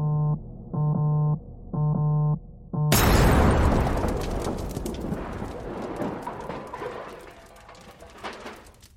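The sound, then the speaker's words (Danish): Four short, steady electronic buzzing tones pulse in a row, then explosives under a car seat detonate outside a hospital: a sudden loud explosion erupts and rumbles on with crackling debris, slowly fading over several seconds. “Den kraftige eksplosion gav genlyd.”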